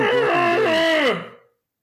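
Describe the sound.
A person imitates a guttural growl: one loud, sustained, throaty vocal rumble lasting about a second and a half, wavering in pitch before sliding down and trailing off.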